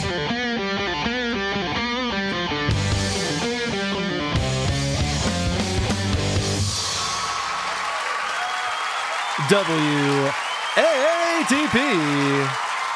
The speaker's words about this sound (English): Please clap.